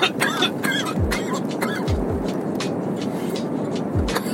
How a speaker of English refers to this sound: Excuse me, jeez. Woo. Cough attack. Don't worry, nobody's near me. And I'm in my car and I have a mask on because I'm about to get into work here. But, sorry about that.